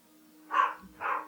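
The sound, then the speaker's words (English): Two short dog barks a half second apart, somewhat muffled, over a quiet low hum with no one talking; the dog is barking at pizza upstairs. “I got to go take care of Artie because he's barking at the pizza upstairs”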